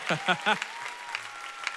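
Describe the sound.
A church audience in the Bay Area claps in a steady, scattered patter while a few voices call out in quick rising shouts at the start, then the clapping carries on more softly.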